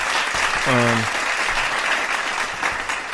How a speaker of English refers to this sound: Shout out to all the Twitch viewers that are coming from Twitch and listening to us over here, man. Round of applause to you guys.